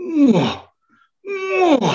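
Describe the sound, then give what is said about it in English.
A man's voice imitates the roar of a full-grown male lion on the prowl in the African bush: two loud, drawn-out groaning calls with a sliding, falling pitch, split by a half-second pause, with no other speech. “It was a full grown male lion. You know, he was on the prowl.”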